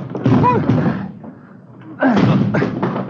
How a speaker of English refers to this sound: Come on, Ben, the front door. Yeah, come on. Hit it!